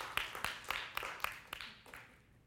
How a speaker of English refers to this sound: Can you give God an all clap offering? All right.